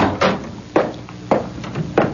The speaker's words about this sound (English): Open the door